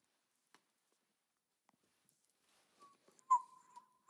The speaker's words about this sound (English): Yeah, just whistle. It's taking me a while to think of the word.